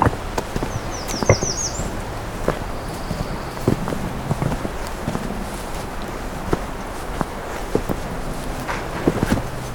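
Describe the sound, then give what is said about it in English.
Brisk footsteps of a person quickening their pace to get back to a recorder crunch along in a steady, quick rhythm over a continuous low rumble, with a short burst of high bird chirps early on. “I'm gonna quicken my pace, get back to where my recorder is at.”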